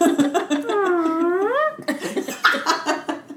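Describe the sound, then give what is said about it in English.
A voiced fart imitation with a buzzy tone that dips, then swoops upward at the end like a question. It is followed by talking and laughter. “The nice question mark fart.”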